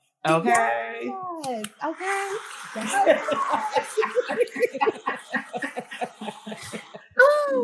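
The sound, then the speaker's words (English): A thin, sparse applause sound effect patters steadily for several seconds, scattered claps like light rain, with laughter and a voice at the start and a voice breaking in at the end. “Oh, that's like raindrops. I need the real deal.”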